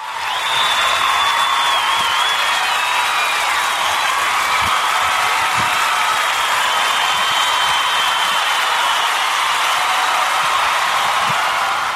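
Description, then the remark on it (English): An applause sound effect: a dense, steady roar of crowd applause and cheering holds loud and even for the full stretch, with bright whistle-like tones riding over the clapping and no speech. “I'm not going to put in an applause sound effect because I just never feel like digging them out.”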